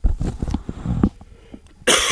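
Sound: coughing fit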